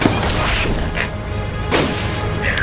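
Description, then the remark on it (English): Gunshots as Saul shoots the thing through a clean hole it punched through steel: a couple of sharp, loud blasts about a second apart over a constant heavy, low rumbling background, with no voices. “Finally, the thing punches a clean hole through, and Saul uses that opportunity to shoot it.”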